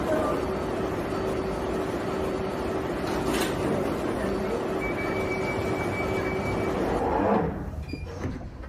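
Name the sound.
underground train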